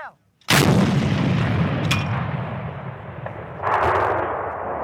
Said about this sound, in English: This is a howitzer, something between a mortar and a cannon. The shells used as artillery are rusty from years in storage. So soldiers are wiping them down.